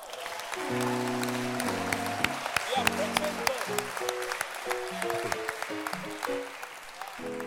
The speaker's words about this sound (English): You can clap.